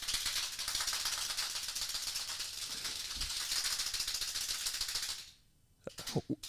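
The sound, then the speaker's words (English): Plastic hand clappers rattle in the studio of the You Should Know show in a fast, continuous clatter for about five seconds, bright and busy, then stop abruptly, followed by a few separate sharp clacks. “I got you some hand clappers since you don't have any participation from behind the cameras”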